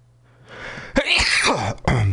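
A loud sneeze: a building breathy inhale, then a sharp explosive burst that trails into a drawn-out breathy release, followed by a second short forceful burst at the end.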